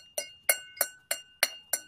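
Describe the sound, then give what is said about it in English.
Six bright, ringing clinks of real crystal glass tapped together at a steady pace, each with a sharp attack and a shimmering sustained tone that lingers briefly, clear with no talking. “This is how you know it's real crystal.”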